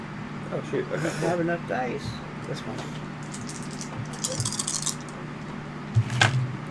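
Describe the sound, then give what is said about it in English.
Dice clatter across a table in a quick burst of small hard clicks, with a final sharp rattle after a pause, as three eight-sided dice and a six-sided die are rolled for an attack; voices murmur early on over a steady room hum. “Shoot, I don't have enough dice.”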